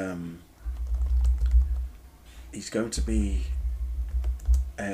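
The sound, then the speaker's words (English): Rapid, steady clicking of keys on a computer keyboard, with a man talking briefly over the typing and a low rumble running underneath. “I'm sure you could probably hear my my keyboards there, sorry.”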